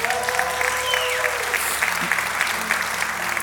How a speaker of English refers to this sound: Well, give the Lord a shout and a hand clap.